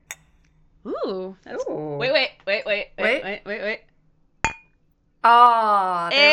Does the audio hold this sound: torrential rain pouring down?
no